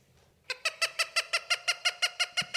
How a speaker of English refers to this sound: Oh, I think that's my bird. Yo, can somebody tell that bird to chill out?